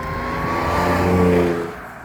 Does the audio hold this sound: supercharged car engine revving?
yes